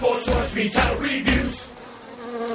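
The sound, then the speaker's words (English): A swarm of bees buzzing loudly, a dense droning hum that swells in a few surging pulses before settling into a steadier, slightly fainter buzz. No one speaks. “Actually, he's permanently covered in bees.”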